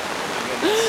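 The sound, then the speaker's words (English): Heavy rain pours down in a steady, dense hiss that fills the whole moment, unbroken, with a short rising tone briefly sounding over it near the end. “I get the feeling that pretty soon we will be walking on water here. Oh, yeah. It's really coming down.”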